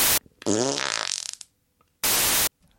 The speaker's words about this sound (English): I think what we'll do is we'll have a burst of static and then me doing a massive raspberry.